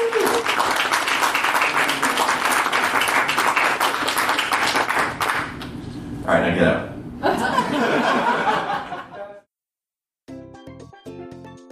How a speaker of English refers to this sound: So round of applause for everybody on the screen.